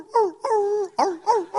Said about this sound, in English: She loves Christmas, but there's only so much of dogs barking jingle bells that she can handle. You know what I'm talking about? That's my favorite Christmas song.